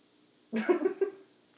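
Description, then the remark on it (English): A cat playing with a Nerf foam dart lets out a single short, chirping meow, lasting under a second against an otherwise quiet background, with no talking. “Our cat's playing with a Nerf dart.”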